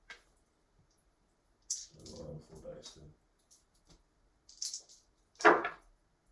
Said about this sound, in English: Oh, so roll four more dice.